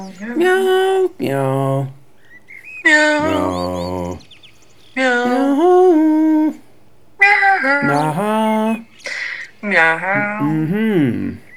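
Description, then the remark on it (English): A person imitates a cat's meow over and over, drawing out about six loud, sliding vocal meows separated by brief pauses. “I don't know, I shouldn't be meowing because I don't think my birds like that very much.”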